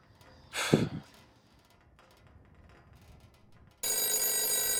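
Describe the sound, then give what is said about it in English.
A loud, jangling telephone bell suddenly starts ringing near the end and keeps going, following a short breathy burst and a quiet stretch. “When did I fix the phone?”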